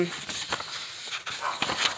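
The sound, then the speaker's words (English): A dog barks somewhere in the background, faint, a few short yaps scattered over a noisy, hissy room tone with no one speaking. “that's my dog in the background barking.”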